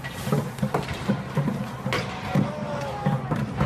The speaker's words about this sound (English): Okay, so there they are smashing a Starbucks. Note what this guy says, because it's going to be important at the end. Fuck that, fuck Trump. Let me play that once more. More window smashing, more cheering.